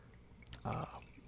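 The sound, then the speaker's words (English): A single brief glug of sake splashing from a bottle into a cup, quiet, with a faint drip just before and a soft hush around it. “So this sake that I'm pouring right now was actually one of the first sakes I ever kind of really fell in love with.”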